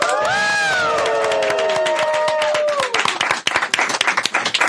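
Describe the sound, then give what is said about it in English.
A round of applause from 28 people in a radio broadcast booth: dense, steady clapping with high whoops and cheers at the start, then the voices fade and the clapping thins out. “And everyone here, let's give a round of applause.”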